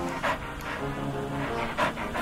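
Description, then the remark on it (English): A dog dozing on the back seat of a moving car pants and snuffles, with quick breathy bursts repeating at an uneven rhythm over the car's steady low engine rumble. “was dozing on the back seat, panting and snuffling.”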